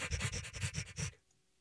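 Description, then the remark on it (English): A voice imitates a scrubbing robot with about eight rapid, rhythmic breathy swishes, fairly loud, then stops abruptly into quiet. “What was that? Scrubbing.”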